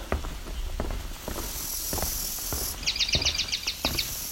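A swamp sparrow sings a short, steady trill of about a dozen repeated chipping notes near the end, fairly clear over scattered crunchy footsteps and outdoor background noise.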